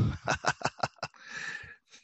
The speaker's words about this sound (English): Mother effing bird.